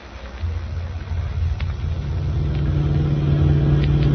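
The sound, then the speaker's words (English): A car engine rumbles to life and builds steadily, its low, heavy drone growing louder and more even as the vehicle pulls away. No voices are heard. “Get my car out of the garage. Hurry up.”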